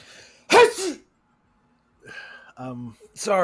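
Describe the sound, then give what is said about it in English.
A single loud sneeze bursts out sharply, followed by a quiet pause and then a few seconds of speech. “I sneezed. I apologize. I didn't mean to sneeze on the podcast.”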